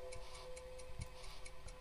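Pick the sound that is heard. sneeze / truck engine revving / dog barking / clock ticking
clock ticking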